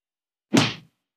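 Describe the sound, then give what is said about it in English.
One sharp slap to the face, a crisp smacking impact that cuts off quickly, heard alone with no voices around it. “You slapped me, so I slapped you back.”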